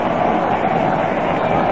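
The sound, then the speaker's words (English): Yankee fans at a baseball game cheer in a loud, steady roar, a dense wash of many voices that holds level without breaks or distinct words for under two seconds. “Oh, the Yankee fans coming alive here.”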